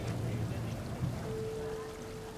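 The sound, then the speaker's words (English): Water splashes steadily in a pink indoor fountain with a golden statue, at the center of an enormous exhibition room, a continuous moderate wash with no breaks, backed by a low room hum and a faint sustained tone that enters partway through. “A dazzling pink fountain sparkles at the center of the enormous room, a golden statue glistening in the water's reflection.”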